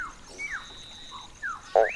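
A male Mount Bellow frog's mating call on Mount Barney, made when looking for a mate: several short, squeaky chirps with rising and falling pitch, spaced irregularly over quiet background, ending in a louder, sharper call. No one speaks.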